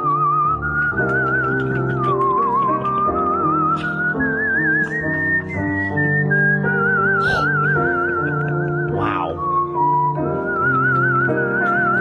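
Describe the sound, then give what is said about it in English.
A whistled melody with a breathy, flute-like tone, resembling a pan flute, gliding smoothly between sustained notes with light vibrato over a steady accompaniment, with no talking. “Sounds like …, master of the pan flute.”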